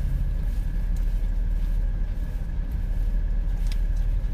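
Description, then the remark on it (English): A new car's engine runs steadily, a continuous low rumble with a faint constant whine above it, even in loudness throughout with no voices. “Did you say you got a new car? Yep, new engine.”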